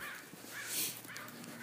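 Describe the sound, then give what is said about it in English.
Several crows caw in overlapping, harsh calls, with a louder burst in the middle over faint outdoor background noise; no one is talking. “And, there's a bunch of crows.”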